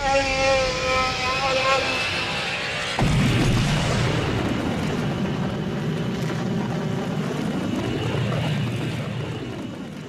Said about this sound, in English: Hey Chewie, fire up the hyperdrive!